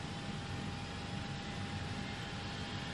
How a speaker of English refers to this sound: Thank you for flying Air Chattanooga. We are on a non-stop flight to Baltimore. We intend to get there in about 9.5 hours. As you can hear, the engines are heating up, and we'll be ready for takeoff in about 2 minutes.